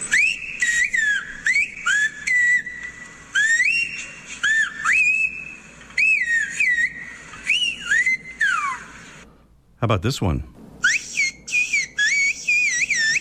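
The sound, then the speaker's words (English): A person whistles a rapid, warbling series of high chirps and trills that mimic birdsong, with brief pauses, a short break, and a quick question spoken before the whistling resumes. “Or maybe you've already figured out that those sounds weren't made by birds at all. They were made by people.”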